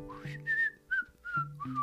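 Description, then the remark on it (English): A cheerful whistled tune, a quick run of bright rising and gliding notes, clear with no talking over it, whistled by someone raking a yard. “Kitty was out raking her yard, whistling cheerfully.”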